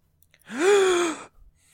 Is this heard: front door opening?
no